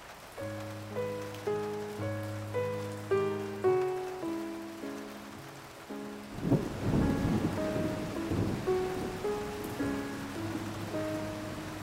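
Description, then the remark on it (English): Rain patters steadily, coming in from the south, beneath slow, repeating piano-like chords, and a deep rumble of thunder rolls in about halfway through before the downpour continues under the music. “Her Fiat Panda was hastily sold this morning, replaced by a skip on a gravelled driveway, piled high with sofas and lampshades, now pebble-dashed and polka-dotted as the rain slicks silently in from the south.”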